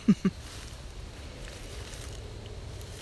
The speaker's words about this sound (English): And you may be able to hear the sound of the wind in the trees. Trees are really tall here. But you may be able to hear that.